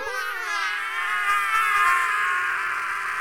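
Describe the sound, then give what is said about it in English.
A character's super shriek power: a continuous, piercing high-pitched shriek that holds steady and loud for several seconds, its shrill wavering tone packed with bright overtones and no talking over it. “Well, my power is a super shriek.”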